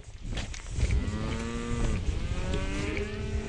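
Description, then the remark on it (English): Dairy cows on a 600-cow farm near Rotorua mooing, long drawn-out harmonic calls overlapping one another, over a steady rumbling low background with no talking. “Lachlan McKenzie farms 600 cows near Rotorua and is the dairy spokesperson for Federated Farmers.”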